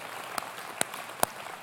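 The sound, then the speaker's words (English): A few sparse claps from a church audience for the members who serve on the help team, four sharp hand claps at a steady, evenly spaced rhythm, fairly faint, with no talking. “How about a round of applause for all those who do serve on that?”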